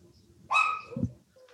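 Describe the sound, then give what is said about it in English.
A single sharp bark from a dog being walked rings out clearly, a bright harmonic yelp that fades quickly, followed by a brief low thump and quiet background. “Someone's walking their dog. Give me a second.”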